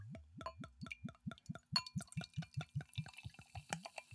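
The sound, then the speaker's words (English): A very dark beer with a dark head glugs steadily out of a bottle into a glass on the first pour, in a fast, even rhythm of hollow gulps, ending in a frothier, fizzing gurgle. No one speaks. “Now, just on the first pour here, this thing is dark.”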